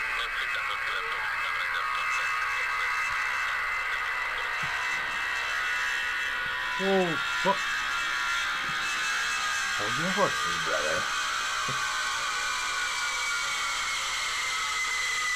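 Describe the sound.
A steady, high-pitched jet engine whine and howl from a C-5A or C-5B transport aircraft drones throughout with a broad roaring hiss, while a man briefly speaks over it partway through.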